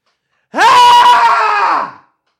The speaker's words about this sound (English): Are you guys screaming at home with me? Please, somebody, anybody listening to this, just let some screams out. It'll make you feel better.